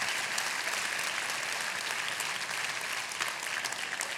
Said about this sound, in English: Give her a round of applause, everybody.